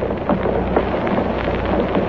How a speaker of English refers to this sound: Now they are rising. Now the whole plaza is rising. Fathers are lifting their small children. The plume fans on the platform are motionless. There is no sound but the shuffle of shoe leather.